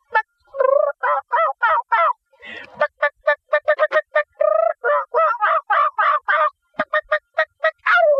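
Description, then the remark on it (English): A man imitates a wild turkey call with his voice, a rapid run of loud, throaty gobbles and clucks in quick bursts, with no other talking. “That turkey call, God has gifted me, and I can just sound like one of them old wild turkeys.”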